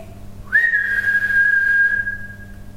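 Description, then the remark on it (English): A single sustained whistle, blown while trying to get a possible spirit to communicate, rises briefly at the start, then holds one steady pitch for about two seconds before fading, with no talking. “Try your whistle.”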